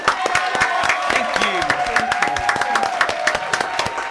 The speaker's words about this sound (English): Can we clap it up one time?